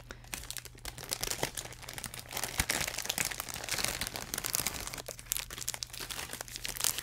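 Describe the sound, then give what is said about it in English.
Continuous crinkling and rustling of plastic snack packaging being handled and torn open, with sharp crackles scattered through the whole stretch over a faint low hum. “What? More packaging?”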